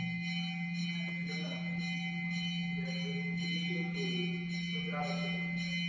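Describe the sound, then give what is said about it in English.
A bell rings over and over in a steady, even rhythm, its metallic tone hanging in the air, fairly soft, with a constant hum underneath. “Or is it a bell for me to keep my mouth shut?”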